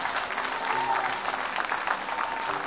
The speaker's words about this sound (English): God bless you. Give them a great big clap offering. Amen.